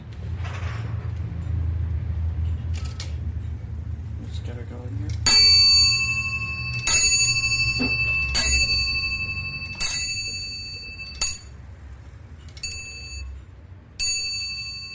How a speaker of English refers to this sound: you will get whatever hour or quarter struck on bells that it happens to be